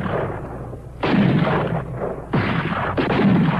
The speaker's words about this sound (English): In the first exchange of gunfire at Concord, 3 British privates fall dead. 9 others are wounded.